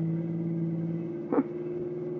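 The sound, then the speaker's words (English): A car engine drones steadily while driving, a low, even hum that runs throughout, broken briefly by a short louder bump midway. “Hey, there's a cop in the road. Keep driving, no matter what he tries to do.”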